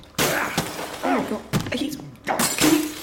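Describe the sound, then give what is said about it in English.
Loud smashing of bathroom fixtures as someone smashes up a bathroom: several sharp crashes and shattering impacts in quick succession, with bits of voice mixed in between the blows. “Smashing up my bathroom.”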